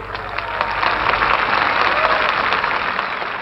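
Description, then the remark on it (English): Sustained crowd applause for a preacher's speech on the mall, a dense wash of many hands clapping at once, steady and loud throughout with an echoing quality from the sprawling setting. “More applause.”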